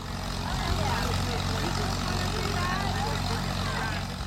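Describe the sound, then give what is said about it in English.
A steady, rumbling engine of an old tractor with its wheels removed chugs continuously, driving a rotating chain swing ride; its low throbbing drone is unbroken throughout, with faint indistinct voices murmuring in the background. “This one is special because it looks like it's driven by an old tractor with its wheels removed, its internal combustion engine connected to the ride's center.”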